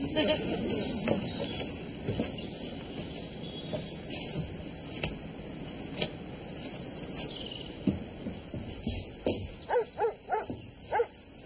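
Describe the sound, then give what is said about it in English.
A big Rottweiler guard dog barks over a murky, busy background, building to a quick run of loud, rhythmic barks near the end, with faint bird chirps in between. “Get in an arse full of Rottweiler gnashes.”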